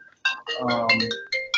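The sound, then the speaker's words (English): A phone ringtone plays during a recording, a short, bright electronic melody of quick tonal notes, clear, with a brief low humming layer in the middle of the tune. “That might be him right now. You know, that's self and I'm fishing with him tomorrow. But I got to turn off my phone if we're going to do the recording.”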